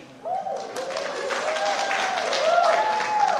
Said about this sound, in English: What kind of response did you get? Well, people applaud.